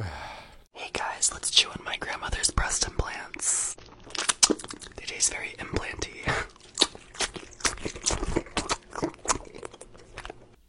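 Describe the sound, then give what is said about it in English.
Wet chewing and squelching as a man chews silicone breast implants in his mouth for ASMR, with dense clicks and smacks running continuously alongside soft whispering, lasting about a minute and a half. “And so then he puts them in his mouth and begins to chew. And it goes on for way too fucking long.”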